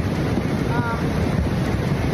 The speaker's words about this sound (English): That water is really raging behind her. Look at that.